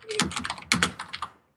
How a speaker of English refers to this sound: Someone is typing like mad. Sorry, that's me. I've got two screens of WoW going. I'm multitasking and yes.